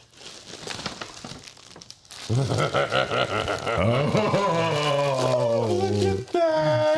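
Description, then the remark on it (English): Teal tissue paper crinkles and rustles in quick bursts for a couple of seconds as a gift is unwrapped, then loud, excited voices take over and drown it out. “So the tissue paper is like a teal.”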